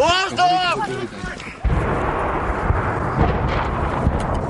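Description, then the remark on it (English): A voice shouts "Get up!", then a Russian artillery shell explodes in Irpin, a suburb of Kyiv, Ukraine, as civilians flee, with a sudden heavy boom that breaks into a long, rough rumble of debris and noise lasting several seconds. “In the Kyiv suburb of Irpin, people dash for their lives. Get up! As Russian shells rain down.”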